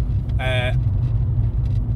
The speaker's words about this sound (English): So we're back in the car. We're back in the car. For anybody who really hates listening to all the background noise, I'm sorry. We do try.